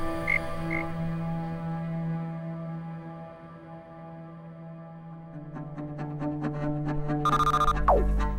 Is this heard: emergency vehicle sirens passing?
no